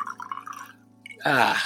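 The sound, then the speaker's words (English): Fever-Tree Cucumber Tonic Water is poured into a glass for a gin and tonic, a short steady splashing stream whose pitch rises as the glass fills, following a moment of faint dripping and fizz. “That was me opening a bottle of Fever Tree Cucumber Tonic Water, which is... Oh, there it is. No, it's not Italy. Tomorrow, but yeah. So let's stick a little bit of that in there.”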